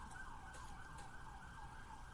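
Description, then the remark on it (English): A wailing emergency siren sounds continuously from outside in New York City, its pitch sweeping up and down, with steady traffic rumble underneath and no one speaking. “Cut the crap with the fucking sirens.”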